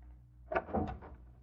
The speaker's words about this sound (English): No, I'll try the door. You're locked. I'll use a skeleton key.